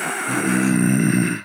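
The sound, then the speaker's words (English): A person imitates a dog's moaning groan: one low, drawn-out, throaty sound that wavers in pitch for about a second and a half, fairly loud and with no other talking. “He's a moaner and a groaner.”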